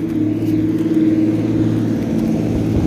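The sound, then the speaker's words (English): A diesel truck engine rumbles in a town, a loud, steady low throb with a rhythmic chugging pulse that holds for a few seconds, with no voices. “It's full of diesel trucks.”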